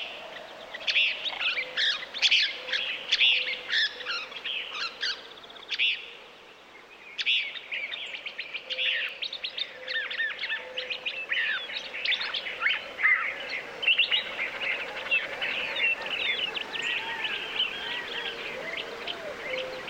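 A chorus of desert birds chirping and trilling at dawn at Gray Ranch, a nature conservancy easement in the panhandle of New Mexico, recorded by Bernie Krause; many overlapping calls at moderate loudness, with no voices, creating a busy, layered morning birdsong scene.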